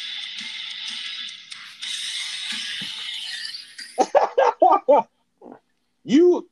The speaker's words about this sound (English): But that wasn't even expected. That was just my ringer going off.